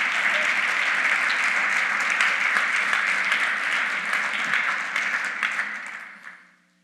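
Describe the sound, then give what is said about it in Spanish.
A crowd claps steadily in a dense, continuous burst of applause, given to the Lord during a sermon, that holds strong for several seconds, then fades out toward the end. “Si lo creen, dar un aplauso al Señor.”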